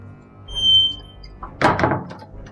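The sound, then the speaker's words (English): A door opens with a short creaky squeak followed by a heavier thunk and a brief rattle, fairly loud against a faint background hum. “Get the door, Alex.”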